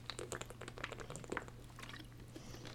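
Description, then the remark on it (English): Water is poured into a cup or glass for drinking, a quiet, uneven trickling and splashing lasting a few seconds over a faint steady electrical hum, with no talking. “Need some water here.”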